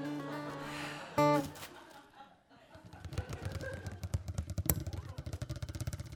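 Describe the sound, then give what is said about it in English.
After a brief vocal chuckle, a heavy snowplow engine idles on a snowy sidewalk in West Broadway, blocking it while its driver is on break, its low, throbbing rumble pulsing steadily and growing louder over the last few seconds. “Just blocking the sidewalk, idling. Excuse me, am I in your way, your snowplow?”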